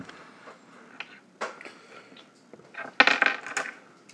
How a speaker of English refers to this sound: That's a big handful of dice, sir.